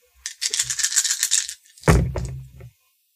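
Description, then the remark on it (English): Dice rattle in a cup with a quick, steady shaking for over a second, then are rolled out onto a hard surface during a game with a sharp clatter that settles quickly. Fairly loud, with no talking. “she is going to get 5 dice. Gilvin is going to get 4 dice.”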